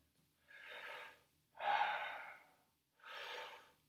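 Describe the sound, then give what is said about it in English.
Three deep, forceful breaths of a breathing exercise in steady succession, each a rushing airy whoosh lasting about a second, with short silent pauses between them. “Might be that you feel some resistance to this breathing, but know that it's only in the start.”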